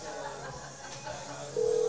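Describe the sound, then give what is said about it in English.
A phone call is being placed to a sponsor, live on air: after a stretch of faint background hiss, a steady, clear telephone tone switches on near the end and holds, fairly loud, with no one talking. “We're going to call our new sponsor. And we're going to talk to him live on the air.”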